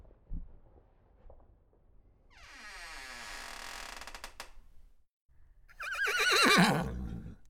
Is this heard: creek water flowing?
no